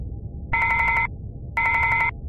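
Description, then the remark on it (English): An intercom phone rings twice in short, trilling bursts, each a rapid electronic warble about half a second long, separated by a brief pause over a low, steady background rumble. “Give me the intercom phone, Lustig.”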